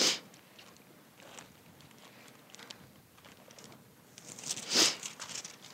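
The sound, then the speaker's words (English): Two sharp, breathy sniffles from someone who has been crying, one at the very start and a louder one near the end, with faint rustling and quieter nasal breaths in between and no talking. “Sorry for the sniffles. It happens when I cry.”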